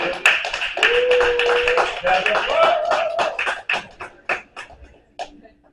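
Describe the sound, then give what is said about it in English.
An audience at a live music show applauds itself, a dense burst of clapping with a few vocal cheers mixed in, then thins out to scattered individual claps before fading away. “Give another round of applause for yourself one more time.”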